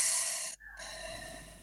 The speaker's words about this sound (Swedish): Och så kan vi ta ett andetag tillsammans. Andas in genom näsan. Och så andas ni en gång till när det börjar ta stopp. Och så andas ni en gång till. Och andas ut.